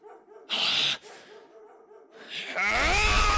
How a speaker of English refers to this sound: Tell that dog to shut up!